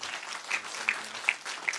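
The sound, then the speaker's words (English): A crowd claps steadily, a dense wash of overlapping handclaps with a few sharper individual claps popping out above the rest, sustained at a moderate level with no one speaking. “Let's clap it up for them.”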